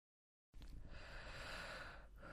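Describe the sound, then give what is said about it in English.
An airy human breath after a moment of silence: one long, steady rush of air with a brief pause near the end before the next breath begins. No one speaks. “The sound of familiar, measured breathing was eclipsed by a heavy, wet, squelching thud, then shattering glass, followed by a high-pitched scream.”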